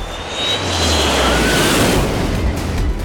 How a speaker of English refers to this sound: As he ran, he suddenly heard a high-pitched screech. Looking overhead, he saw that the UMF Air Force had arrived. Their sonic jets moved so fast he could barely see them.